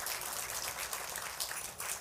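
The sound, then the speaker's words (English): A church audience applauds steadily, a dense wash of many hands clapping together at a fairly even level throughout, with no voices standing out, giving a clap offering for their Chinese brethren for Chinese New Year. “Let's give a clap offering for them.”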